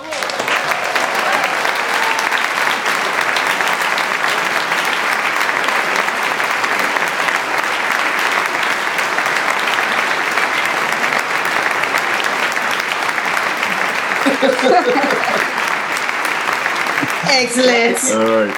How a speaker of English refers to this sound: Put a clap in there. Hold on. Let's really clap.